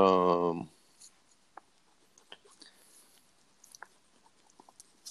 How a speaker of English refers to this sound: I'm also going to be writing all of this down too as well. So I'm writing random words on the paper right now, and we'll break it down into something accurate next time or next part of this.